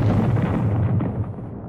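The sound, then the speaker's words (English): A loud blast from a Scorch Cannon fired in a game and an explosion, a heavy low rumbling roar that stays thick and forceful throughout and fades only slightly at the end, with no voices. “that's when you get a Scorch Cannon, and you get a Scorch Cannon, and you get a Scorch Cannon, and you fire it at your friends and your enemies and blow everybody up and turn them all into lovely, lovely fireballs.”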